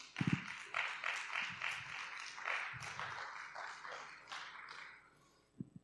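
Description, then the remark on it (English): A standing crowd claps together in a steady, dense burst of applause for the Lord for his word, lasting several seconds, then it thins out and fades, with a few low thumps at the start and end. “Come on, would you stand with me and give the Lord a good round of applause for his word?”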